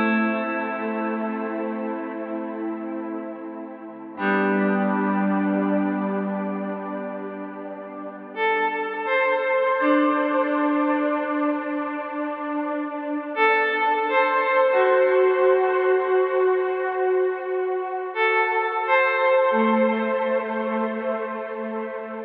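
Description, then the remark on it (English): Sustained guitar chords played through a Cloudburst ambient reverb pedal, which adds harmonics to the reverb tail, combined with a slow attack from Eventide's Physion plugin, swell into lush, shimmering reverb, with bright upper harmonics blooming over each tail to form a smooth, pad-like wash; chord changes arrive every few seconds, with no voices. “It's an ambient reverb pedal, but it adds harmonics to the reverb tail, creating complex pad-like sounds.”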